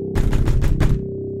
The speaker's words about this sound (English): The banging on my front door woke me around midnight.